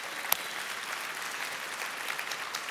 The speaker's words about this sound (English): Lift your hand real high if you're in education in this house. Lift it up real high. Can you give a hand clap to these people this morning?